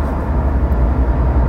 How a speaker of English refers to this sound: And also these loud trucks next to us right now that are definitely going to be picked up on that. Killing your vibe.